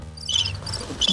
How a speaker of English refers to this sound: Crickets. Give me crickets. Oh, crickets, the man. Crickets.